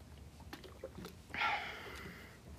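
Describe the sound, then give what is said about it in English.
A few soft clicks and mouth sounds, then a brief airy slurp as someone sips water, trailing into a quiet breathy hiss. No one speaks. “Get a sip of water.”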